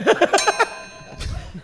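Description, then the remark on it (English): A quick run of about five bright bell dings, the "what a week" bell, rings out, their tones lingering and fading, followed by a short burst of low murmuring or laughter. “That's the what a week bell.”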